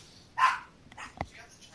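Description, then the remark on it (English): A single sharp dog bark rings out, followed by a couple of softer, shorter yips or sounds trailing after it. “Random barking. Sorry about that.”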